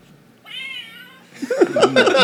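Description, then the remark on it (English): A cat meows from the box of the Exploding Kittens card game as it is opened, in a drawn-out, steady tone, then breaks into a louder, more agitated string of wavering meows, clear with no talking. “You have to get the full effect of opening the box.”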